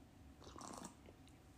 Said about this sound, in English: So I'm sipping on some tea right now. I forgot the one I'm sipping on. I have a lot of teas